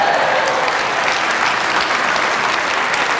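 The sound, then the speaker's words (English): An audience applauds a speaker's joke that the Patriots keep winning Super Bowls, a dense, steady wash of many hands clapping at a constant loud level that fills the whole stretch, with no voices standing out. “That's your applause line, okay, right there.”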